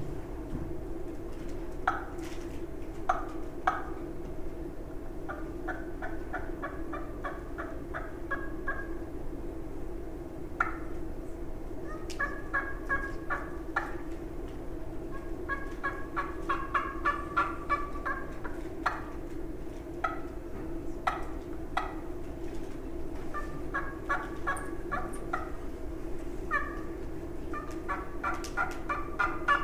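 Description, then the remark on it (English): Soft turkey hen tree yelps, made by a caller in the morning to sound like a hen waking up, come in short, quiet bursts of rapid raspy notes. Each series is followed by a pause, over a steady low background hum with no talking. “But what I like to do is start real soft with some tree yelps and then just kind of wake up in the morning.”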